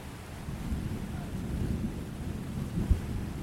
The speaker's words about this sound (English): We're going to head into that storm if we don't think of something fast.